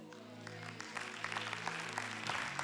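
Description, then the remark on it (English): Light, scattered golf-clap applause from a small crowd, soft, sparse claps patting along over a steady low sustained tone, swelling slightly toward the end. “You guys are going to give Jesus a golf clap.”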